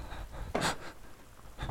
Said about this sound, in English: Cover the wick of the candle. Your breathing is sputtering the flame.